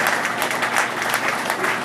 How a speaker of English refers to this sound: Come on, let's give God a hand clap of praise for that great salvation again.